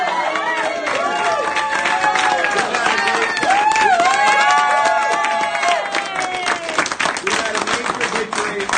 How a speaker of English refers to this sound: Look, thank you very much for that applause. Look, we've had a major victory today.